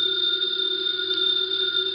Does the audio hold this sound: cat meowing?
no